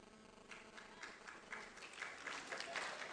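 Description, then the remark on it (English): An audience of men applauding, a dense patter of many hands clapping at once, building slightly louder over a few seconds with no voices on top. “Only the men are clapping, you see?”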